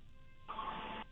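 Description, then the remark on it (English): A hair dryer whooshes on with a steady, breathy roar and a faint whine, running for about half a second before cutting off. No one speaks. “Okay, the hair dryer is on. Let me hear it.”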